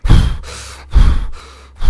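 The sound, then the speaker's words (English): A person imitates a cat's labored breathing: heavy, raspy breaths repeating about once a second, each starting with a loud huff that trails into a long wheezy exhale. “And anyways, you know, I noticed that he has really labored breathing.”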